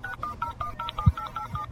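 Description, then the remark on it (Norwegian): A quick run of telephone keypad tones as a call is dialed to a name-change office, about eight or nine short beeps in a steady rhythm, each a bright two-pitched chirp, with a couple of low thumps underneath. “Jeg skal ringe bytte navnsentralen.”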